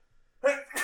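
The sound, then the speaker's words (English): A single sneeze bursts out after a moment of quiet: a brief voiced catch, then a sharp, hissing, breathy release, with no talking around it. “Bless you.”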